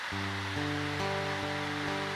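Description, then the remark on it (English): Steady, even hiss of falling rain, loud and unbroken, with soft sustained musical chords underneath that shift every half second or so. No one speaks. “And as the rain is falling, Lord, as You are providing, Lord, we know that Your providence is laying in laying things at Your feet, Jesus.”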